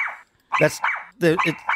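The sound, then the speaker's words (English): A voice imitates a puppy's barking: about five high, yappy barks in quick succession with short gaps, fairly loud, with no other sound around them. “it'll bark non-stop. Like that.”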